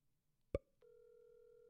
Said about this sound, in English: I like the dial tone. That's nice. Yeah.